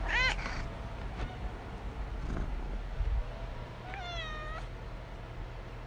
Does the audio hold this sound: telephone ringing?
no